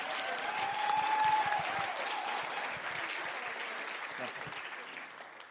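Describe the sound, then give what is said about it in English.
An audience breaks into sustained, steady applause to the Lord for sending a visiting team, with a faint sustained tone briefly audible near the start and scattered voices mixed into the clapping. “But would you just give, let's just give the Lord an applause for sending this team here.”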